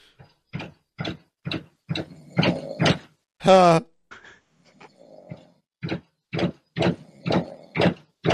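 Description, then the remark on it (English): A door knocker raps in a steady series of sharp, evenly spaced knocks, pausing midway for a short loud burst and a murmur of sound before the regular knocking resumes. “They're using the knocker, I think, on the actual.”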